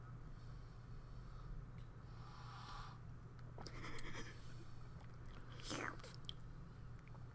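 A bottle of Ginger Aid is twisted open with a few soft crackling clicks, then a brief slurping sip, with a low steady hum.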